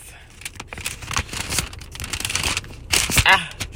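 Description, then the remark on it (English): Papery rustling and ripping, a stretch of crinkly tearing sounds as a sealed envelope holding a letter is torn open and handled inside a car, with brief murmured voice sounds mixed in. “I'm opening up a letter. I have no idea what it's going to say. It's sealed, and I am opening it right now.”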